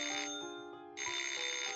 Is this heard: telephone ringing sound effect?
yes